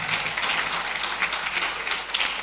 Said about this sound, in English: Clap, don't look at me like that. I'm preaching.